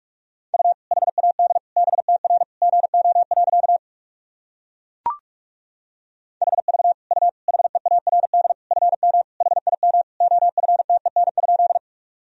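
Fast Morse code at 45 words per minute sending practice sentences: a steady mid-pitched tone keyed in rapid dits and dahs, sent in two long runs separated by a pause and a single sharp click.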